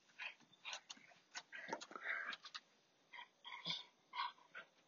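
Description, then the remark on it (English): Excited dogs eager to go for a walk whine and yip in short, uneven bursts on a rainy day, moderately loud, with no one talking. “Dogs are just desperate to go walking.”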